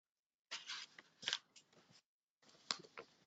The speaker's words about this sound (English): And you'll have to bear with me because I'm going to be shuffling sometimes through my notes. There's a lot of notes too that I want to be aware of.